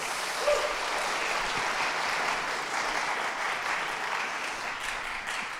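A crowd applauds steadily for several seconds, a dense, even wash of clapping that holds at a constant, fairly loud level without pause or buildup.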